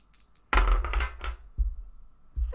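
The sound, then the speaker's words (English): Dice clatter onto a hard tabletop in a quick burst of rattling clicks, followed by a couple of softer knocks as they settle, with no one speaking; rolled in a tabletop role-playing game for a dexterity check needing 65 or less. “So you're hoping for 65 or less.”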